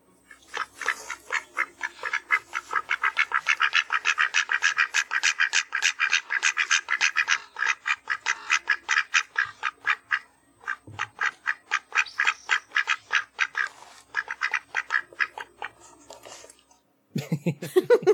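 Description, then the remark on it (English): Two ducks quack back and forth in rapid, repeated bursts, one run of calls answered by the other with brief pauses between, fairly loud with no talking. “This is two ducks having a conversation.”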